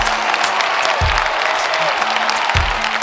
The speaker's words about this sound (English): A round of applause there.